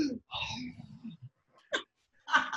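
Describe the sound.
A voice imitates the heavy, labored breathing of a heavily pregnant woman in the heat at a bolero concert: a few loud, raspy gasps and huffs in an uneven rhythm, with short pauses between the strained breaths.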